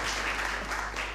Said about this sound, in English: You can applaud. Thank you.